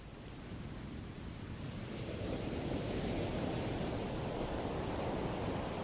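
A recording of steady ocean surf from a relaxation album rolls continuously, a broad hissing wash of waves that swells slightly louder after the first couple of seconds and then holds constant, with no voices.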